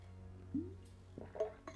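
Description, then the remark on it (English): Someone sips water from a glass: a soft gulping swallow, then a few light glass clinks and small taps, all quiet over a steady low hum, with no talking. “Excuse me, let me drink some water.”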